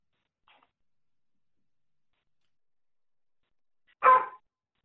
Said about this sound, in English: Sorry, I... It just cut out. We could hear some dogs barking in the background.